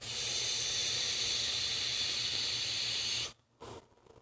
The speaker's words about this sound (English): See, that's what the yoga class would hear. Just a big fat vape in the back.